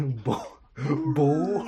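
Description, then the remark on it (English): A dog sound effect plays: two loud, throaty barks, the second drawn out into a longer, rising howl-like bork. “You made the Bork sound, and I'm legally required to play that.”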